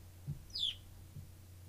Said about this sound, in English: I feel like this bird's gonna get real fucking annoying. And not like now, but when I'm editing.